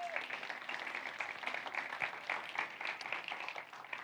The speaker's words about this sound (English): But we want to say happy Father's Day to all men in the room, because the investment you make in the lives of the people. So ladies, let's give our men a round of applause.